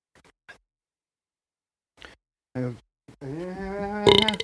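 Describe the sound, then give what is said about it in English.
A loud, drawn-out burp, rising in a croaky, rough stretch after a few faint clicks and brief silence. “That's a good burp.”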